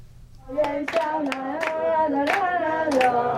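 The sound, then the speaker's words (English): In Taiwan, DPP caucus whip Ke Jianming and party lawmakers, each holding a rose, clap in uneven bursts and cheer together for Taipei mayoral candidate Chen Shizhong and Taoyuan mayoral candidate Zheng Yunpeng; the crowd sound is steady, with sharp hand claps cutting through every second or so. “Each with a gifted rose in their hand, DPP caucus whip Ke Jianming and party lawmakers cheer for Taipei mayoral candidates Chen Shizhong and Taoyuan mayoral candidate Zheng Yunpeng.”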